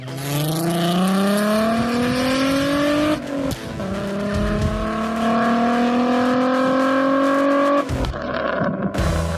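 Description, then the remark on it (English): A Volkswagen VR6 engine revs loudly in two long rising pulls, with sharp exhaust pops and crackles at the end of each pull. No one speaks. “By the way, that VR6 and that Volkswagen just sounds insane. Oh my God, the pops on that.”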